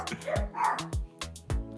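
dog barking excitedly

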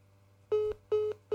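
telephone call tones

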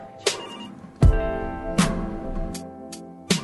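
phone ringing

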